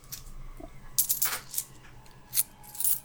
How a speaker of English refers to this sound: That is 6 points. Six points. More coins onto my freestyle stack.